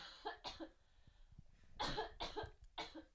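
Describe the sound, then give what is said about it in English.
A burst of coughing: two sharp coughs, a short pause, then three more harsh coughs in quick succession, loud with no talking. “Coughing on them shits.”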